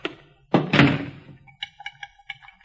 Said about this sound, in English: The back door's wide open. I'll close it. Wait a minute, don't touch it. Don't touch that knob. Kick it shut.